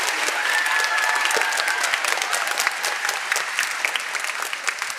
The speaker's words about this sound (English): So if we could give them a round of applause.